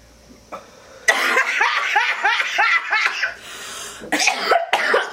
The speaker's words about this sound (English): Did everybody hit it? It is smooth. It's so smooth. I know. Don't let my coughs fool you. This shit hits so good, yo.